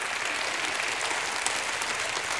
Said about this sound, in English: Can you one more time give God a hand clap and a shout of praise?